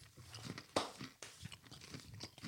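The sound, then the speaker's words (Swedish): Someone bites into a cake and chews it, a sharp initial crunch followed by a string of soft, irregular, moist crunching and munching sounds with no talking. “Jag börjar med kakan.”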